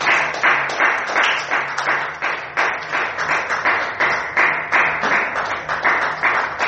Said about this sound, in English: Hallelujah. Can you clap your hands for Jesus?